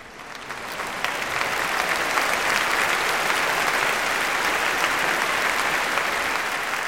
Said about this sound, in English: The crowd exploded in a roaring ovation, everyone waving their handkerchiefs at their beloved author.